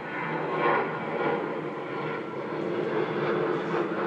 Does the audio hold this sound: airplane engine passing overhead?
yes